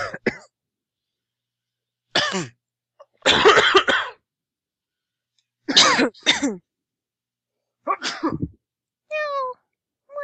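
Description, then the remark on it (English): A string of loud, staged coughs and throat-clearing noises imitating a random crowd cough, five or six short rough bursts spaced a second or two apart, ending with a higher, voiced squeak. “All right, and I want to get a random crowd cough.”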